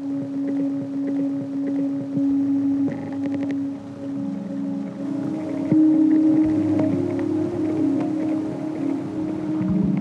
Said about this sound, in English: So it's like lots of water noise and then the dolphin clicks.